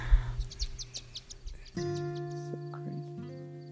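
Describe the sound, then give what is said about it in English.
Birds chirp outdoors in quick, bright bursts, moderately loud, before a steady low humming tone takes over for the last couple of seconds with a few faint chirps above it. “There was a bird right underneath us, and another one.”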